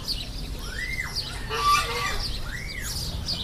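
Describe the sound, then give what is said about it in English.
Ducks and other farm birds call at a roadside farm attraction over steady outdoor background noise, with two drawn-out rising-and-falling calls and a harsher squawk between them, moderately loud. “Here's a giant ostrich and goats that are having fun climbing around a big pyramid. Lots of ducks.”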